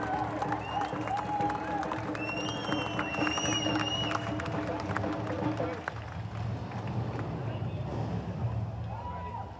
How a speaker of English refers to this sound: Give him a big round of applause, representing the Muslim community.